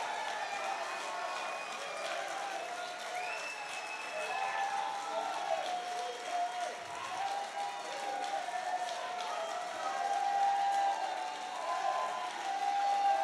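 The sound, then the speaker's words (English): A large crowd claps and shouts to God together in a dense, continuous roar of overlapping voices and hand claps, holding steady and swelling a little louder toward the end. “Clap those hands and give God a mighty shout.”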